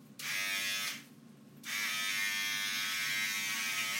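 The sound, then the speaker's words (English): Electric hair clippers buzz steadily in two bursts while someone cuts hair. The loud, high-pitched motorized drone cuts out briefly for under a second, then starts up again and runs on without voices. “I believe with the buzzer you're supposed to do it dry.”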